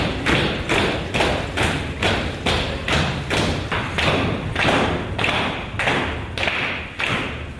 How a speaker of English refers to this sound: Can I repeat, they pay for this? Like, they're slapping themselves right now and paying for this, paying a lot of money for this. And sometimes other people slap them, and sometimes the slapping is, like, really hard.